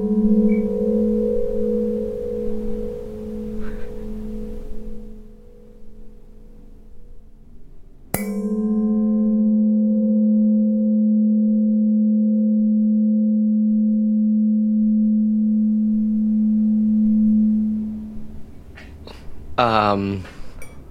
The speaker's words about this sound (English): That it sounds like somebody hitting a decanter to make sure that it's really glass. Okay, that's a good guess, because these are two pieces of glassware cheersing.